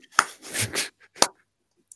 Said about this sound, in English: You're getting a slow clap for that, hang on.